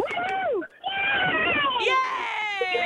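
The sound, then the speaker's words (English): Young girls, ballerinas riding in a car, screaming and wailing: loud, high-pitched, sustained voices with sliding pitch and a brief break, then several shrill cries overlapping toward the end. “There's 2 people screaming, the third one just figured out the 2 doesn't go into 3.”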